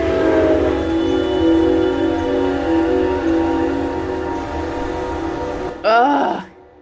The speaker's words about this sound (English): And as it gets closer and closer, it gets louder and louder, and you can feel it more throughout your whole body. And as soon as it would, like the front of the train would cross right in front of us, we would start screaming.